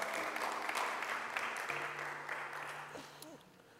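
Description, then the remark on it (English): Sustained applause from a large crowd clapping in praise to God, dense and steady, with a low held tone and a few scattered voices rising near the end as the clapping begins to taper. “Come on and give God another hand clap of praise.”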